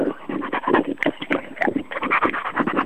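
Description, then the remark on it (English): A German Shepherd dog lapping up liquid: a quick, steady run of wet slurping licks, several per second, moderately loud throughout, with no voices. “Lapping up a can of Jim Beam and cola you've poured into a saucer for yourself.”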